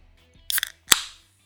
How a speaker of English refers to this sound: You hear that? Yeah. Did you just open a can of tuna? That is the crisp sound of an energy drink.